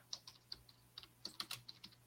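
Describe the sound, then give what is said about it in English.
Quick, irregular clicking of keys on a computer keyboard as a question is typed in, about a dozen sharp taps in a couple of seconds, fairly quiet with a faint steady hum underneath. “I'm just typing in Fish in the Mid-South has the question.”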